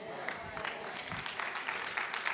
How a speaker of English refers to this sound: See, some people ain't clapping, this is hidden, I know.